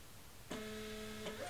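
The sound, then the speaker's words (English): A small printer printing shipping labels for order fulfillment in a bedroom starts up with a click and runs with a steady mechanical whine, a second click partway through as the label feeds out; quiet, no voices. “I'm pretty sure within the next moment we should have a cat in here because they hear the printer and they know there's stuff to get into.”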